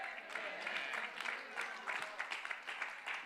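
Sparse, thin applause from a church audience, a scattered patter of claps with little energy, steady for a few seconds.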